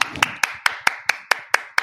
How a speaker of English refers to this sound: We're going to give him the quick claps.